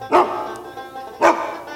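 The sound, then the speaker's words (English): A new hunting dog named Patches barks twice, about a second apart, each bark loud and sharp, with a faint lingering tail between them and no talking. “I cut two big ones off of Daryl, so me and my new hunting dog can enjoy it together.”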